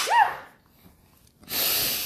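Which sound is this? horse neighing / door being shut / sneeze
sneeze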